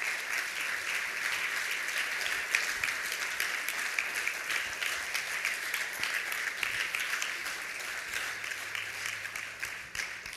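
A crowd applauds steadily for about ten seconds, a dense, even wash of many hands clapping at once with no voices standing out.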